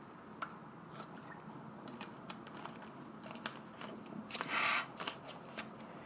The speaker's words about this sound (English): I'm taking a sip of Coke.